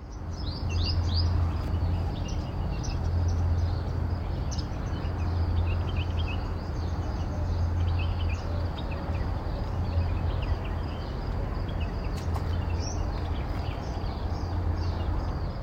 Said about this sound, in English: So for Sound of the Week, I thought I would get out to try and record the lovely morning trill of the male purple sunbird.